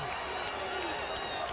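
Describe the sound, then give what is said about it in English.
A steady, dense roar of a stadium crowd at a football game in Lafayette after an interception, many voices blending into continuous murmuring noise at an even, moderate level without distinct cheers or claps. “Boy, the crowd is stunned and shocked here in Lafayette.”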